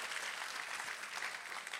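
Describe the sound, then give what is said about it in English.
A church audience applauds steadily during a sermon, many hands clapping at once in a dense, continuous wash of sound with no voices rising above it. “You ought to clap today like you've made the decision to humble yourself before God.”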